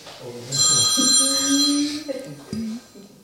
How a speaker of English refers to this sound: Oh, that's my husband's phone.